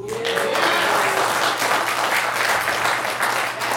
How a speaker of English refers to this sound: Next, Revenge of the Creature in 3D. I know. Okay. I'm preparing myself for the wind from your applause that's going to hit me in a second.